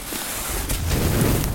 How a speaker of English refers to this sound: Crackling fire? Check.